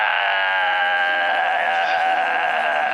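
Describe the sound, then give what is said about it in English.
A single loud, gravelly scream from a man as he is bitten on the neck, held for about three seconds, harsh and rasping with a steady, strained pitch and no other voices. “He screams a very gravelly scream.”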